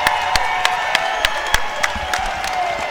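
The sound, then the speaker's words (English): A crowd cheers and whoops in a steady roar while scattered sharp claps punch through, a sustained celebratory din as a game ends in a win for Jamestown, sending the team on to Kansas City, with the head coach clapping along. “emotional here as this one concludes, and head coach Danny Neville clapping along as Jamestown's moving on to Kansas City”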